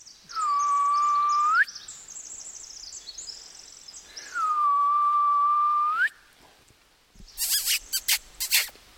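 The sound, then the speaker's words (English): A person gives two long, steady whistled notes, each rising slightly at the end, a gentle contact call imitating an owl to reach endangered owls, followed by a cluster of sharp, scratchy squeaks. “So since we're kind of in their living room of their house, so to speak, the way that I'm going to try to contact them is by doing a gentle contact call, because out of respect, you know, the birds, if they are here, will be sleeping.”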